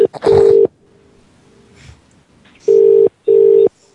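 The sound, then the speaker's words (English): A phone ringback tone sounds over an unanswered call to the Bedbugs Motel: three steady, loud buzzing rings, each about half a second, with a quiet gap between the first and the next two. “Bedbugs Motel is just not picking up.”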